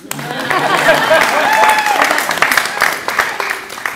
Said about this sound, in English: Clap.